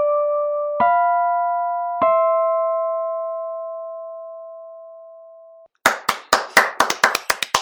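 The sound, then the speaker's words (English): Three chiming tones ring out and hold for several seconds, then a short burst of loud applause follows, with quick irregular claps lasting about two seconds. The applause is a crowd clapping sound effect, not a real crowd. No one speaks. “Just kidding. We don't have a crowd.”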